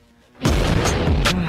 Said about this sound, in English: It's too loud, babe. I'm deaf. Okay? Turn down. My ears hurt, babe. The explosions and stuff.